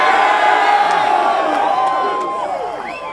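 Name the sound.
crowd cheering and whooping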